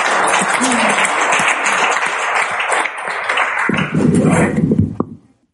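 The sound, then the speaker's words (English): A church crowd applauds the worship team steadily for about five seconds, a dense wash of clapping with a few louder individual claps near the end before it stops abruptly. “No, you don't have to clap.”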